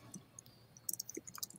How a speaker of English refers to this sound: I'm typing this in.